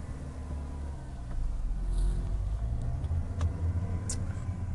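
A car engine hums steadily at low pitch from inside the vehicle on a Friday morning commute to work, in traffic before reaching the motorway, rising slightly as it creeps forward, with faint clicks and squeaks over the continuous rumble and no talking.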